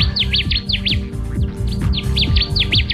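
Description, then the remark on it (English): A Connecticut warbler (Oporornis agilis) sings a loud, rhythmic run of repeated sharp chirping notes in quick bursts, clear, with a low steady hum of background sound beneath. “It's Operornis agilis, the Connecticut warbler, today's Talking Birds featured feathered friend.”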